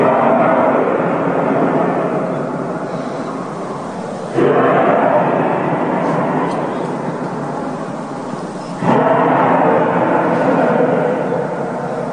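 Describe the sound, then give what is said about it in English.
A loud, sustained booming sky sound, like trumpets, known as sky trumpets and not thunder, rolls on in three long droning swells, each restarting abruptly at full strength before slowly fading, with no voices. “People from all over the globe have experienced the same phenomenon. They call it sky trumpets.”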